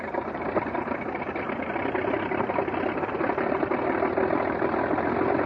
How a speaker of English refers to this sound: This engine is a 180 horsepower Mercedes six-cylinder engine